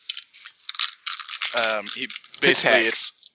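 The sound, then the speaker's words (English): Dice rattle and clatter as they are gathered up and put away, a busy clicking jumble with brief murmured voice sounds breaking in partway through. “Sorry, I was putting dice away.”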